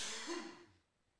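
cough or throat clearing

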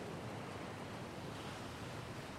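ocean waves

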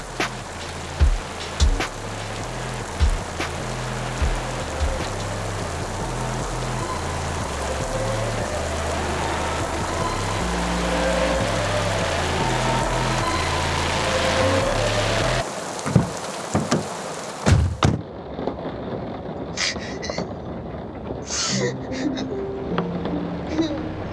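rain falling

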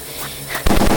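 gunfire

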